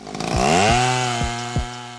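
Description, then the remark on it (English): A chainsaw engine revs up to a loud, steady whine and holds there while it cuts down a tree, with several sharp rhythmic thumps along the way. No voices. “Around the world, billions of trees are cut down each year to make paper products.”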